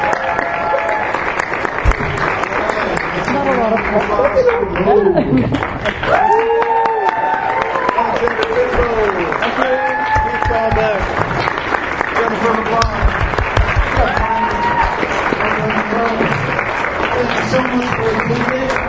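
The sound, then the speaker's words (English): A crowd at an expo applauds the volunteers loudly and steadily for the full stretch, a dense wash of clapping with voices calling out and cheering over it, continuous. “And also, let's have one last round of applause for the volunteers, because they've done a great job.”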